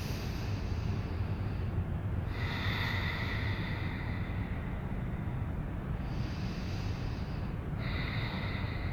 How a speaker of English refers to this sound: So you're kicking with the feet, you're pulling with the arms, and you're firing up through your belly to imprint your sacrum down into your mat, and you're still breathing. Three more deep breaths here.